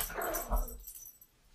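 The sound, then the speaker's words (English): A puppy named Axel lets out a short burst of high yappy barks mixed with whiny whimpers, fairly loud, then quickly falls quiet. “Puppy attack. Hey, puppy.”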